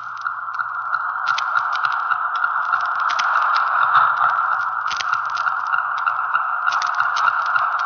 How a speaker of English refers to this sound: With the aid of a stethoscope, we recorded this human metronome.